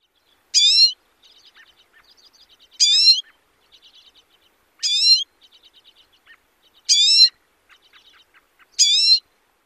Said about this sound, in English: The second main call is a nasal rising whistle, which reminds me of a house finch, but again, maybe a little sweeter.